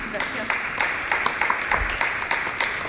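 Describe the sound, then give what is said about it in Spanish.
An audience applauds steadily, a dense patter of many hands clapping at moderate volume, with a few sharper claps standing out and faint voices mixed in. “Un aplauso aquí a Amanda.”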